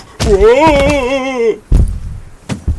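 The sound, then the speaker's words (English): A wooden thunk as a trap door hits a man sets off his long, wavering yell as he falls off a roof, cut short by a heavy thud, followed by a couple more bumps. “It was an accident. That trap door hit me and...”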